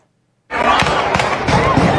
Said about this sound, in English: We have an active shooter at a graduation. Gunfire erupting on the campus of Virginia Commonwealth University, just moments after students from Richmond's Huguenot High School held